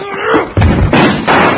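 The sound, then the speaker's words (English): A heavy wooden crash as a door is hit hard enough to break its lock and smashed open, followed by two loud, sharp gunshots in quick succession, one from a .35 caliber rifle, all forceful with no talking. “Hit the door hard enough to break the lock.”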